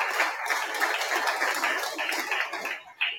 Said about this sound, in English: Just clap to her. But that's what we have to do. Clap, clap, clap, clap to Rahab.